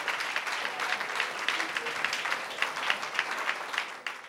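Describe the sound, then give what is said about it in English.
An audience claps together as a clap offering to the Lord, in sustained, dense applause, many hands producing a steady crackling roar that holds fairly loud throughout before tapering slightly at the end. “Can you give the Lord a big clap offering?”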